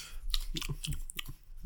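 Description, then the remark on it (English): A hand rummages through folded papers inside a bag, making a quick series of crinkly rustles and soft clicks over a couple of seconds, with no talking. “Let's see, I'm presented with the bag and shuffling around.”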